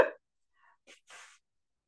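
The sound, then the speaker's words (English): A single quiet, somewhat muffled sneeze: a short catch of breath, then a brief hissing burst of air, with silence after. “Hold on, I got to sneeze.”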